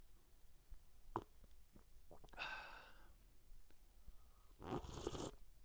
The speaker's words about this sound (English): Oh, sip of coffee.